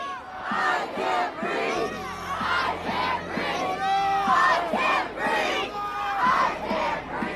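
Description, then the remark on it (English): Several bystanders yell and shout angrily at police officers over one another, telling them to let George Floyd get up during his arrest, in a continuous, overlapping clamor of raised voices, loud throughout, with a low steady hum running underneath. “In the video, bystanders can be heard yelling at the police to let him get up.”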